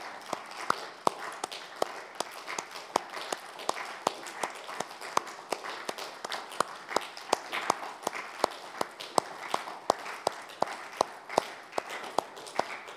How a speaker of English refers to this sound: We got to clap. We got to do this for them.